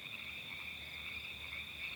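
Frogs croak in a steady, unbroken high-pitched trill that holds at an even level throughout, with no voices and only a faint low rumble underneath.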